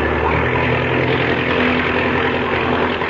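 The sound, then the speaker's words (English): An airplane engine, its throttle opened up wide before takeoff, roars steadily at full throttle, a loud, dense, unbroken drone with a low rumbling hum underneath and no voices. “Now, open the throttle up wide.”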